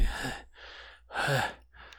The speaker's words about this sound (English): Well, I'm breathing a little heavy.